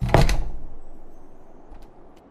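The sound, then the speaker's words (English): A front door slams open with a single loud bang, then a low rumbling tail fades away and a couple of faint knocks follow. “Tim heard the front door slam open.”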